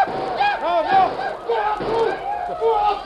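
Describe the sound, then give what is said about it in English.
A crowd of warriors charging toward a wide open gate in a Lone Ranger radio drama, shouting and whooping war cries, overlapping yells rising and falling in pitch for several seconds, loud and continuous without a break. “Now give a war cry like Red Fox. Wave your arms.”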